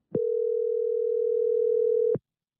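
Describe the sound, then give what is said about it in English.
A telephone line rings once as a call is placed to a priest's phone number shown on billboards in Connecticut: one steady, electronic ringback tone lasting about two seconds, bracketed by small clicks at its start and end, heard alone with no voices. “I wondered what would happen if I called. So I did.”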